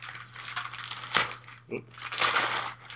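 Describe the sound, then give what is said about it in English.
Paper crinkling and rustling as a secondary package wrapped in Batman and Joker paper is unwrapped, with a couple of sharper tearing bursts in the middle and a faint steady hum underneath. “Okay, now there's a secondary package here, wrapped in Batman and Joker paper. Excellent. That I'm opening.”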